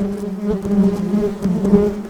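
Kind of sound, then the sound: insect, bees buzzing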